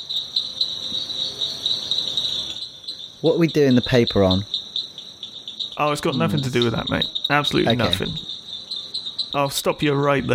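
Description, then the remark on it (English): A dense chorus of frogs trills in a steady, high-pitched drone that never lets up, with several people chatting over it in bursts. “I'll give you that. It is a frog.”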